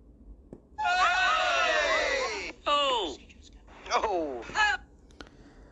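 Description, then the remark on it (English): A person imitates a scream: one long, loud, strained shriek that trails downward, followed by two shorter, sharp cries, with no other talking. “Did you scream? Did you pull one of these?”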